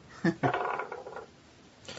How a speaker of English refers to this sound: Don't fail me now, dice.